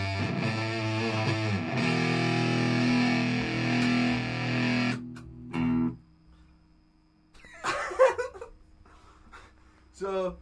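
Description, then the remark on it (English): A thick, buzzing distorted instrument tone from an effects pedal with distortion turned on rings out loudly for about five seconds, then cuts off, leaving a low hum and a few scattered, quieter bursts of sound. “I turned on distortion.”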